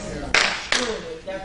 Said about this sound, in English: Thank you for the one clap.